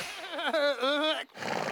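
A horse whinnies once, a loud, quavering neigh lasting about a second, followed by a short breathy snort-like rush of noise.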